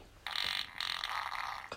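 A loud, wet, sputtering fart sound, alone, breaking into two noisy bursts with a brief catch in between, lasting over a second.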